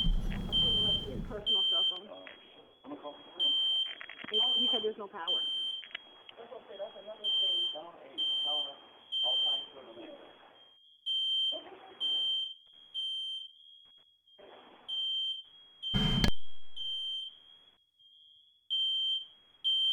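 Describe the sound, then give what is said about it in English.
A smoke alarm beeps in a steady, repeating high-pitched pattern throughout, loud, while people talk intermittently underneath it. “Stop smoking. It's probably why the alarm's going off.”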